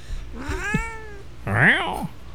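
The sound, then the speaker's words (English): An annoyed cat, Callie, lets out two drawn-out, complaining meows after being picked up, the second louder and harsher, with no one talking. “What did you do to that cat? All I did was pick her up.”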